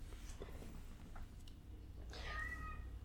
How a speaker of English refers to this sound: I heard that. Meow.